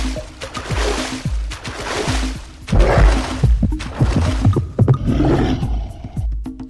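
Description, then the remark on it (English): A video game lurker shark, a big orange shark, closing in on a player who has swum out too far past an island shoreline: steady, heavy heartbeat thumps pulse beneath a loud, continuous roar of churning, sloshing water, with no voices present. “So a lurker shark shows up, this big orange thing, and you can see it swimming in the water below you, and you can hear it by that heartbeat.”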